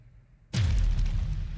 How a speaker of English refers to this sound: And you push yourself off of the opposing wall, shield out into the iron bars. The explosion hits as you make contact.